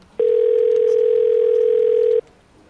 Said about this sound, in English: walks up and dials the phone on speaker.